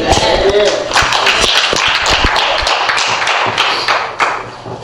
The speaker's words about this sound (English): We give a hand clap of praise to the Lord for these fathers.